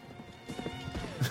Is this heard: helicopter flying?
no